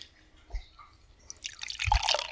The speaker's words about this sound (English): Oh, that's a nice pour. Yeah, that was good. It's funny how closing your eyes really makes you focus on the nice sounds of the beer.